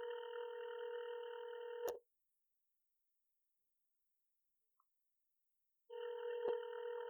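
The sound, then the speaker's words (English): An outgoing phone call to a friend rings out: a steady electronic ringback tone sounds for about two seconds, falls silent for roughly four, then starts again, clear with no one talking. “This nigga be working early and shit, so he might not even pick up.”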